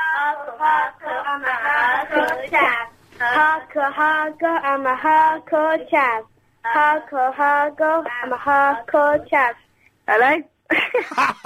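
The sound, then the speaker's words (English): Children sing a song together over a thin, muffled phone line, phrases flowing in a steady rhythm with brief pauses between lines, moderately loud. “Put the kids on the phone. Get them to sing it to me.”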